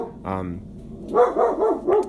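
Penny the dog barks at nothing in a quick series: one short bark, a brief pause, then four sharp, fairly loud barks in close succession.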